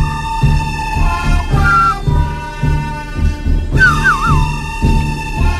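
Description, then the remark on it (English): A spaghetti western whistling tune: a bright, wavering whistled melody rises over a steady, thumping musical backing, with two short whistled phrases sliding and trilling above the rhythm. “Just on that spaghetti western thing, the guy whistling, a little bit of trivia that lady on the call gave us.”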